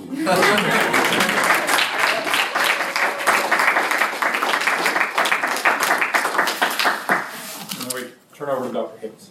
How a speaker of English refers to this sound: Okay, you can cheer now.